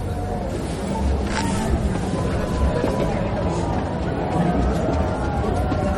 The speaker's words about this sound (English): That's why everybody's cheering, I think, because they can actually see it. You hear the cheering? It like cuts off at a certain point. Is that cheering or what is it? Yeah, it's everybody's cheering because the clouds parted a little bit.